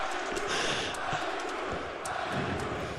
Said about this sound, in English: Stop breathing it into the mic, you weirdo.